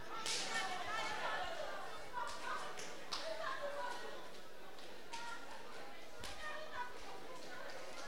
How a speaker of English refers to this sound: Please stand and go to seven people. Slap them the hottest high five you've given in your life till their palms almost bleed.